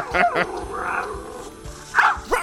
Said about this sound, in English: A built-in speaker allows communication with authentic puppy sounds.